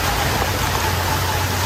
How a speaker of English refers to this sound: Streets look like streams or rivers in the Northeast after relentless rain.